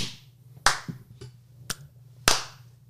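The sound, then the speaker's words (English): A few sharp hand claps, three loud ones and a couple of softer ones, land at an uneven pace over a steady low hum, with no talking. “Clappy claps.”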